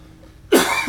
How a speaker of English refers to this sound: Well, you're coughing up a lung. Yeah, it's not great for the podcast.